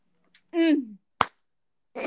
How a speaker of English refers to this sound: Clap hands.